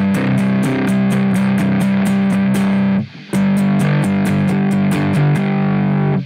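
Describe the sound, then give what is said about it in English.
A distorted electric guitar, played through a pedal with separate gain and distortion knobs set to less distortion and more gain, chunks out a steady, rhythmic chord pattern with moderate crunch, loud, pausing briefly for a beat before resuming the same driving strum. “So I have gain and distort on two separate knobs. So less distortion, more gain.”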